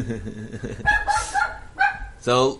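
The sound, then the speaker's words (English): A dog barks several times in quick, excited bursts, loud, with some higher yipping tones mixed in, after a brief stretch of a man talking. “So that dog's very excited for the Eagles.”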